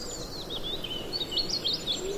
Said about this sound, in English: There's a chaffinch sort of to sing there, that descending chatter.